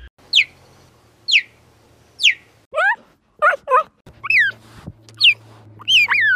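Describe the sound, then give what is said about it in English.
A cheetah chirps repeatedly, giving high, bird-like yelps, about ten in all, first evenly spaced then quicker and more tumbling, clear over a faint low hum. “That was a cheetah. Did you know cheetahs chirp?”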